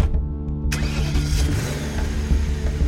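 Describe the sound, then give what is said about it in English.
A car engine starts up and runs with a steady, low rumble, rising slightly as the car pulls away and drives off into the night. Nobody speaks. “Jerry got into the car and drove off into the night.”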